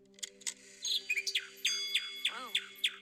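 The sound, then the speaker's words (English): A mechanical nightingale on a clock chirps in a quick, warbling series of bright tweets and trills, clear, with a faint steady hum underneath and no talking. “Cool clock. Look at that little mechanical bird. It's a nightingale, actually.”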